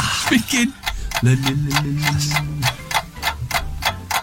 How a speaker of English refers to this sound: The clock is ticking.